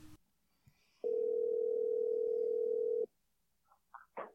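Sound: dropped phone call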